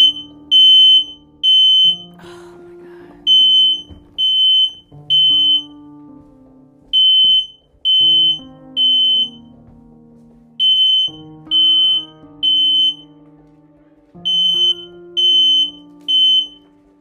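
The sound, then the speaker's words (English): A smoke detector alarm at home, set off by smoke from burning sage, blares with shrill high beeps repeating in steady groups of three with short pauses between, over lower droning tones underneath. “The smoke from the sage made the smoke detector go off, but yeah, I was home.”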